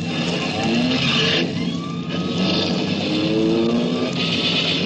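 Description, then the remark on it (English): A getaway car's engine roars and accelerates hard as it flees a police prowl car, its pitch climbing in repeated rising sweeps over a steady rumble of road noise, loud throughout with no voices. “Hey, Charlie, a prowl car. Yeah, come on, Mike. Let's get out of here.”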